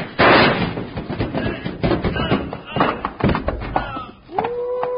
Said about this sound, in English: you knocked him off the top step and he rolled all the way down right at our feet. Yeah, he'll be out for a while, but he'll be all right.